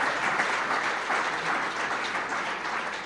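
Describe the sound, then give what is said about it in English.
A crowd claps steadily, many hands blending into a dense, even wash of applause that holds at a fairly loud level for a few seconds, with no voices heard. “Can you clap your hands?”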